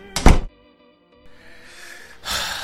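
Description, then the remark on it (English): An office door is pushed shut with a single solid thunk, followed by a brief hush and then soft rustling movement. “Shut the door behind you, would you?”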